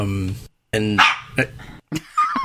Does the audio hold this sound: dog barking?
yes